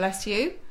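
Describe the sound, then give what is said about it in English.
A single short sneeze, a sharp hissing burst that slides into a brief voiced, tonal 'choo' and then trails off. “Bless you.”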